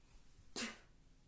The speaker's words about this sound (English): Bless me. Since y'all not here to bless me while I'm sneezing.